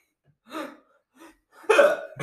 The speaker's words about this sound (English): I can't stop. So. He has the hiccups. Yeah, I have the hiccups.